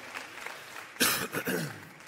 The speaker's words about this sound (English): What a great day to be at church today. Let's give another big round of applause for all of our new members at TLCC.